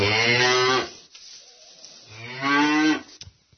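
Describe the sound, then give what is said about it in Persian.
A cow moos twice, two long, loud, harmonic lows separated by a short pause, with no talking over them. “گاو الان خوشحال شه.”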